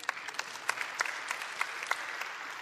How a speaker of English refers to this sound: You can clap right there.